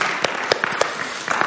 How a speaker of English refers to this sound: We do this weird thing where we clap because it's weird because it's different.